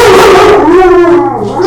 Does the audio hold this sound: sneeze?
no